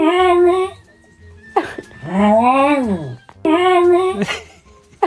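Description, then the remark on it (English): A dog, Ozzy, makes three drawn-out, whining vocal calls, loud, each rising and falling in pitch like a spoken word, as if saying its owner's name, with brief pauses in between. “Tell you what, have a listen to this. See if you think Ozzy the dog is saying Ellie.”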